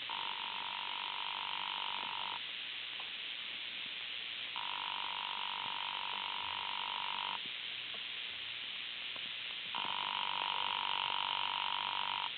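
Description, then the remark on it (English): A telephone in room 304 rings unanswered, heard through the line as three long buzzing rings separated by pauses of silence, over a steady faint hiss with no voices. “There doesn't seem to be any answer.”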